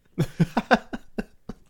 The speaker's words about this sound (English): And are you sneezing many times or coughing? I'm coughing.